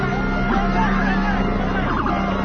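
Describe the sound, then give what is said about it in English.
A police car's engine rumbles steadily as it drives forward at a barricade with protesters standing against it in New York, its low drone continuous, mixed with the murmur and shouts of the crowd around it. “they're standing up against the barricade in front of the cop car, and then the cop car drives forward”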